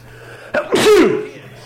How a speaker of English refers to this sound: Oh, you scared Kitty. Yeah, well, I sneeze loud.